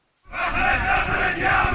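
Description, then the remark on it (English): A large crowd of hundreds of Shiite militia and their supporters chants "death to America" and shouts together while laying siege to the U.S. embassy in Baghdad, a loud, dense roar of many voices that swells in rhythmic waves after a brief silence at the start. “Chanting death to America, an unprecedented assault.”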